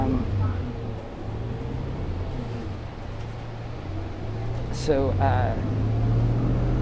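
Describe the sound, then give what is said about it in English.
Steady low engine drone and road rumble inside a moving bus that has just turned south onto Portland, with a brief rising squeal near the end and faint murmuring voices in the background. “So it's just me on the bus.”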